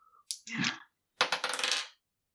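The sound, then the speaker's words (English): Dice rattle and tumble across a hard surface in two quick bursts, a short clatter followed by a longer run of sharp, bright clicks before settling. No voices. “I'll do another roll for Ertlby.”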